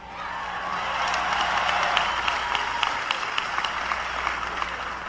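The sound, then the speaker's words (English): A large crowd applauds steadily for Nelson Mandela at New York City Hall in 1990, a dense wash of clapping with sharp individual claps standing out, sustained across the whole stretch. “It was quite a big crowd.”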